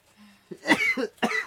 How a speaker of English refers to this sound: Don't go out of the kitchen coughing.